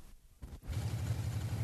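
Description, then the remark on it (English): A car engine left running idles outside a Sheebean, an unlicensed pub and poteen off licence, with a steady, low, throbbing rumble that pulses evenly. It starts after a short quieter stretch with a couple of dull low thumps, and no one speaks. “I left the engine running a minute ago.”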